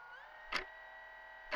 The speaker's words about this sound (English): Do you think you could turn off that clock? I don't know. Let's check. Ha! It's still ticking. I know.